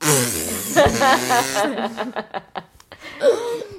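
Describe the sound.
A voice blows a buzzy, sputtering fart imitation, followed by a run of short, choppy chuckles and a brief voiced exclamation near the end.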